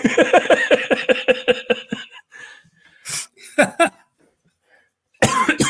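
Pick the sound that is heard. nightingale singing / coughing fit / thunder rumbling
coughing fit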